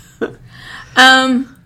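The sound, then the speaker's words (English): A brief throaty catch, then a half-second voiced burp with a buzzy, resonant tone, fairly loud, with no talking around it. “Burps.”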